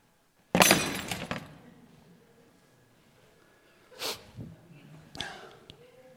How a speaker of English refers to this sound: A wine glass, that can be dropped on the floor too. Or you could say drop a rock on it.